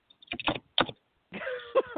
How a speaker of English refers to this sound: Because I'm like, she's typing away. I'm like, oh, my gosh.